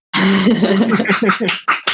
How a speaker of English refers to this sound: Are you okay? Clap twice if you're all right.